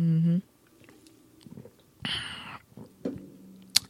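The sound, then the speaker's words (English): Quiet mouth sounds of someone taking a sip of a drink: a brief hum, then a soft slurp and small wet clicks and swallowing noises, with no talking. “Take a sip, hold on.”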